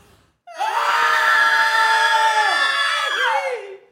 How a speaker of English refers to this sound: They open the door and they scream.